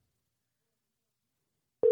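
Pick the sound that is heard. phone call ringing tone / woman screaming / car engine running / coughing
phone call ringing tone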